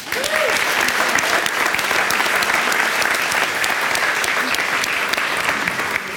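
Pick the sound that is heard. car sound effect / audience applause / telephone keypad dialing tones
audience applause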